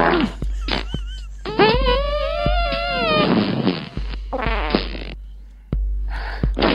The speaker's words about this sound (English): And there's so many movements in the video, and these guys got different farts to match up with different movements. Yeah, it's brilliant. Different pitch.